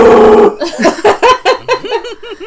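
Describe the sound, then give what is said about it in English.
A game's DM lets out a short, loud, rough bellow, imitating a giant elk, then dissolves into a quick run of rising-and-falling laughing bursts. “Okay, your giant elk goes.”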